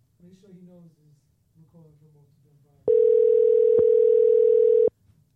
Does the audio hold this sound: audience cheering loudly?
no